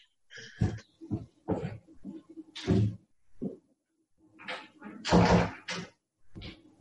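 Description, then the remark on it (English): A door is being closed to keep out the noise of a shower, with a series of knocks, clunks and scraping bursts as it's handled and shut, with no talking. “I was about to get up and try and close this door so it's less noisy.”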